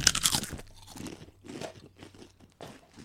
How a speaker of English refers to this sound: Okay, take a chip. You're gonna crunch it at three. Hey! 2, 1, crunch.